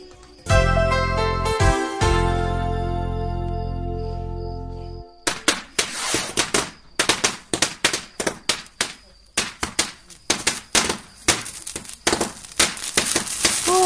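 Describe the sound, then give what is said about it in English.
A Diwali fireworks display exploding in the sky: a sustained, ringing chime-like tone gives way to a dense, irregular barrage of loud pops and crackling bangs that goes on for several seconds. “They want to take a break for the fireworks display and wish everyone a happy Diwali.”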